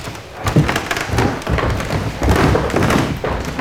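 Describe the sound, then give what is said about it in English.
Footsteps thud and knock on creaky wooden floorboards and a Jacobean staircase in a historic building, going from the great hall up toward the Archbishop's retiring room, a steady run of heavy, uneven treads with no talking. “By lots of lovely creaky floorboards, which are fantastic.”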